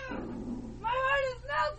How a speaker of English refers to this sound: Cute cat. Oh, my heart is melting.